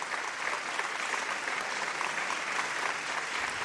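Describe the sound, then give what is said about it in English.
Steady applause from an audience fills the whole stretch, a dense, even patter of many hands clapping at moderate volume without cheers or shouts, a respectful clap as a man who has just sung stands, gives a slight bow and exits the stage. “It is just a very respectful and very reverent clap as the man stands, gives a slight bow, and exits the stage.”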